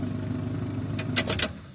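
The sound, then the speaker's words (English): A car engine rumbles steadily as the vehicle pulls into a warehouse, with three quick, bright hissing bursts near the end. No one speaks. “RC most likely arrives first, as he's a rigger and wasn't having to deal with the trackers, and then Griff and Mary Sue's car pulls in afterwards.”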